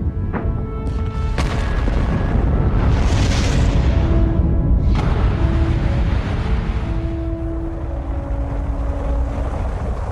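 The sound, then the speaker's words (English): A rocket launch engine roar as the first crew sets off for a landing on Mars: a loud, unbroken, deep rumbling blast with a few sharp bursts early on and faint whining tones riding over it, no voices. “America watched as the very first crew set off to make their first touchdown on the red planet.”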